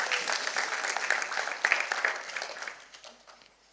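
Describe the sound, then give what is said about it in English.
A church audience applauds with dense, crackling claps that hold steady for a few seconds, then thin out and fade as the clapping dies away. “Everyone give yourselves a round of applause.”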